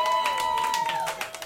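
An audience claps steadily, a dense patter of many hands that keeps going without a break, with faint cheering voices blended into the applause.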